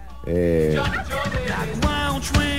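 A turkey gobbles loudly, a short tonal call breaking into a rapid, warbling rattle of gobbles that lasts a couple of seconds.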